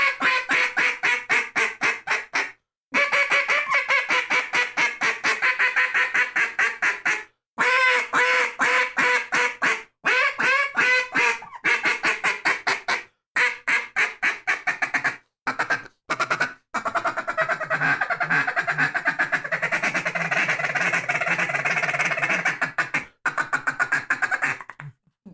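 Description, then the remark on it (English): A Megaphor duck call is blown, producing long runs of rapid, flat, buzzy quacks with brief pauses between bursts, with the rhythm loosening into drawn-out, raspier notes toward the end. No one speaks. “I mean, if you can control the call, if you can make that flat quack noise, that's the first initiative of controlling the call.”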